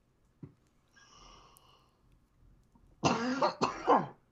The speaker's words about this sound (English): that cough was for you, my friend.